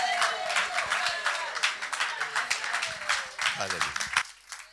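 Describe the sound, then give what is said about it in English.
A large crowd gives a standing ovation and clap offering to welcome Pastor Taiwo Odukoya. The applause is sustained and dense, many hands clapping at once in a steady wash. Voices call out over it, with one rising shout near the end before the clapping cuts off. “So without much ado, with a standing ovation and a clap offering, let's welcome God's servant, Pastor Taiwo Odukoya.”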